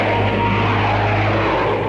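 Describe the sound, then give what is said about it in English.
A loud, steady drone of propeller airplanes flying low overhead, with a deep engine hum and broad roar filling the whole stretch and no voices. “Planes. How low they're flying.”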